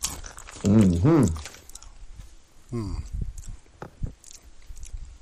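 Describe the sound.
Crunchy munching and chewing of ranch-flavored snacks from a share-size bag, a few short crisp bites spread over several seconds, with someone humming brief murmurs near the start.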